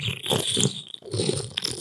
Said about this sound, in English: Bon and Vive. Is it? It's just, I'm going to drink it right here on the microphone. Y'all want to hear it?